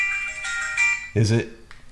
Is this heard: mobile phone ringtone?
yes